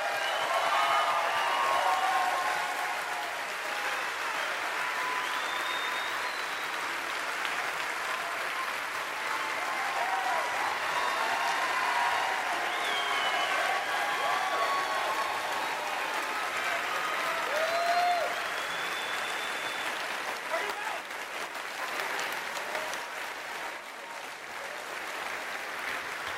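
Sustained applause from a large audience for a company's decision not to take money from people who disagree with its core mission. The clapping is a dense, steady wash that holds at an even loudness for nearly half a minute, with faint cheers and murmurs mixed in.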